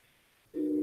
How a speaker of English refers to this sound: Whoa, freaking train's coming by.